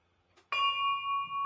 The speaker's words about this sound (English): And afterwards, they claimed to have heard the bell.